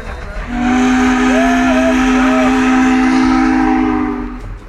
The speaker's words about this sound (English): up on the shore of Fontana Lake, and it turns out nothing disrupts a podcast interview like an old-fashioned steam train. I heard it. It's been, way up there. It's been blowing its horn down there. Yeah, blow your horn, steam man! Blow your horn!